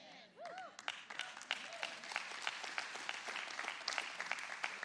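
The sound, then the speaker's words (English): A crowd claps together in celebration of Jesus reconciling people to God, a dense, steady burst of applause that holds for about five seconds, with a brief vocal whoop near the start rising above the clapping. “Which is awesome, and why we would even clap at that, celebrate that, but there's more.”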